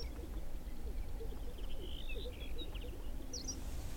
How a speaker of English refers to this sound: The LEK is about 250 yards from the road where we're parked, so it's hard to hear the birds, but I can just barely see them. Gray, lumpy shapes moving back and forth in a grassy open patch in the sagebrush.